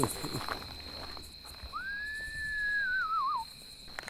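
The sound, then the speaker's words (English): A man whistles a single drawn-out screech-owl imitation call at night while out walking, rising then holding steady before trailing off in a wavering tremolo, heard clearly over a steady hum of crickets and katydids. “continued his screech owl calls, and while the night was filled with the sounds of crickets and katydids, we did not hear the whinny or the trill in response.”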